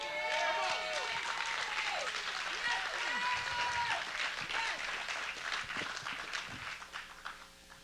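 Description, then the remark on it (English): An audience claps and cheers loudly in a sustained burst, with shouting voices mixed into the applause before it gradually tapers off near the end. “I'm gonna start using the claps to take my water.”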